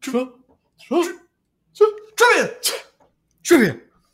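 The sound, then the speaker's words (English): A voice shouts the word "trivia" in short, explosive bursts that mimic a sneeze, about six in a row with brief pauses between, loud. “Trivia. It's like a sneeze.”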